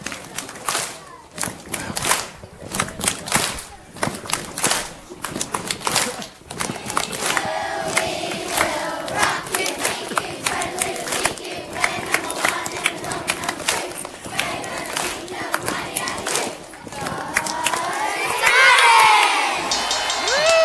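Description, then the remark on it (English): A large group of grade-six schoolchildren at St. Martin's cheers and chants loudly and continuously for about twenty seconds, voices rising in rhythmic bursts with scattered shouts, swelling to a high-pitched peak near the end. “Oh, we're leading it off with the charge from the grade sixes.”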